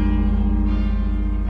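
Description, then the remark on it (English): The 200-ton broken Tsar Bell at the Kremlin tolls, its deep hum of low, rich tones ringing loudly and steadily with no fading across the short stretch, heard alone with no voices. “The 200-ton broken Tsar Bell is on display at the Kremlin for all to see. And now, finally, we can hear it, too.”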